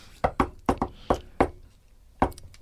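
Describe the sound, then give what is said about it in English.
A patterned secret-knock rhythm of sharp knocks on a hard surface: two quick pairs, two single raps, a pause, then one final knock, fairly loud with no talking. “We had a secret knock.”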